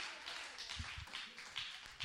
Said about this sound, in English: Let's clap our hands unto the Lord all over the house.